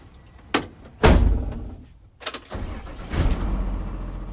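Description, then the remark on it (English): Two sharp door-like thuds, a metallic clunk, then a truck engine turns over and settles into a steady low rumble as the truck heads out to collect textile scraps from local manufacturers. No voices. “Every day, trucks head out to local manufacturers making fleece jackets or upholstered couches to collect their textile scraps.”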